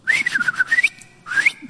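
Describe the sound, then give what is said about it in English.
A person whistles an imitation of cardinal song: a clear, steady run of bright, mid-pitched notes, a short pause, then another brief whistled phrase that rises slightly. No one speaks. “And then you can hear cardinals singing up in the trees.”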